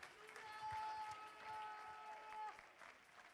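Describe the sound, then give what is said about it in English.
A church audience claps their hands for Jesus in a dense, steady burst of applause while a held organ-like tone sounds underneath, the clapping fading slightly toward the end. “Clap your hands one more time for Jesus.”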